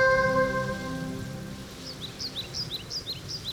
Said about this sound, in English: And we got the birds and the ocean sounds to finish off the opening track to ….